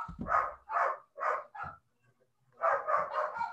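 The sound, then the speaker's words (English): Dogs bark upstairs in quick bursts, four sharp barks, a brief pause, then another rapid volley of four. The barking sounds somewhat muffled. “So, sorry, there is absolute chaos going on upstairs with my dogs, and I know everybody can hear it.”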